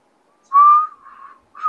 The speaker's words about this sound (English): I can't whistle. My lips are too dry right now.